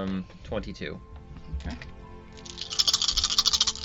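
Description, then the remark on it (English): A quick burst of speech, then a dense, rapid clatter of many dice rattling and tumbling across a table, loud, lasting about a second and a half. “That's a lot of dice.”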